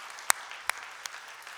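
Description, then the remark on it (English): A few scattered handclaps, three or four sharp claps spaced unevenly over a quiet background, a brief, sparse round of applause rather than a sustained ovation. “Should we clap? I don't know. It feels right, doesn't it?”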